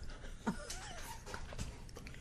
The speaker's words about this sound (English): Wow, there's a lot of gasping in the studio.